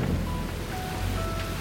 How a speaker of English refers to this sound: Though our road trip started with little trouble, 3/4 of the way to Karakoram, Mother Nature decides to amp things up a little. Boy, this rain does not look like it's letting up.